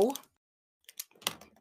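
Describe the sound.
A short burst of voice at the start, then after a brief silence a cluster of sharp clicks, several quick snaps in a row of a pen being clicked.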